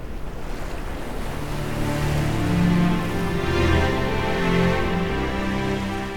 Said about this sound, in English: There were no sounds beside the soft lapping of the sea. It was quiet, peaceful.